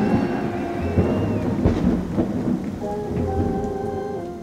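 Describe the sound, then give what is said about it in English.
A thunderstorm with lightning, steady heavy rain and rolling thunder during an outdoor performance, with a few loud crashes early on, then a low rumble as the downpour continues. There is no talking. “And Maria never lost her nerve, not even when a thunderstorm collected around her mid-performance.”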